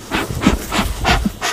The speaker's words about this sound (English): He stokes his bee smoker, a small metal homemade-looking canister with pine needles. It's used to calm the bees as he pulls a frame out of the hives.